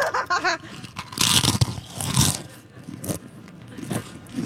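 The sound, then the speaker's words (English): Crunchy food being chewed right up close to the microphone, with loud, wet crackling bites and munching bursts repeating irregularly over a few seconds. “Of the moisture in your mouth with the food that makes me most oogly.”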